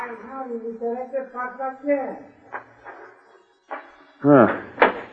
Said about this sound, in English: Now get this door open